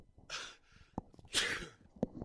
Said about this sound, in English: Pardon me. Got a sneeze here.